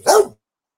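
A single sharp dog bark, loud, cut off quickly and followed by silence, from a dog at home freaking out because someone just arrived at the house. No one is speaking.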